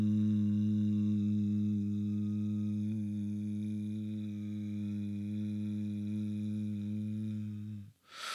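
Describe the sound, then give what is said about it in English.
A single sustained low hum during a throat chakra breathing exercise holds one steady pitch for about eight seconds, rich in harmonics and fairly loud, then stops abruptly with a brief breathy intake at the end. “Hum.”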